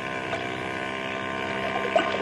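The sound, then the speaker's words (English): A steady engine drone hums across the water, like a motorboat running at a constant pace, its tone unbroken for the whole stretch with a faint splash or knock near the end. “look through these night glasses and see if that's the same boat.”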